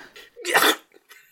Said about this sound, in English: Gesundheit.